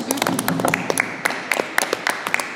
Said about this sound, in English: Let's clap it up. Let's clap it.